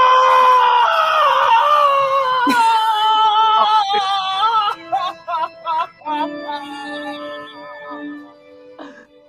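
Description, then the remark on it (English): A shrill, drawn-out scream from a horror movie wavers in pitch for several seconds, then breaks into a run of short, choppy cries before trailing off. It's loud, with no talking. “I'd scream too if I was in that movie.”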